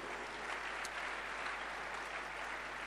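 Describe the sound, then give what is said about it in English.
An audience claps their hands together for a family being blessed, in a steady, dense wash of applause that holds at an even level for the whole stretch, with no voices rising above it. “Clap your hands for the family.”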